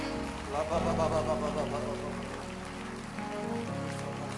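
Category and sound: crowd, audience clapping hands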